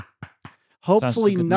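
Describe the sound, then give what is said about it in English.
Three quick, evenly spaced knocks on a small bespoke wooden relay cube held in the hand, crisp, followed right away by a man starting to speak. “I am now knocking on this wooden cube.”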